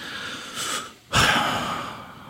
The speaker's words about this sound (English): Just deep breathing.